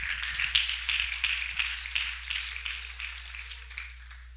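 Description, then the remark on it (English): A church audience claps hands to the Lord to thank God in a steady, dense wash of applause that fades gradually over several seconds, with a low constant hum underneath and no talking. “Why don't you clap your hands to the Lord and thank God for his love?”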